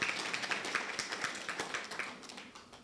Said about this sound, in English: We've got a groom sitting over there, for those who don't know. Are you nervous? A little bit. Just go with the flow, mate. Yeah, give him a clap.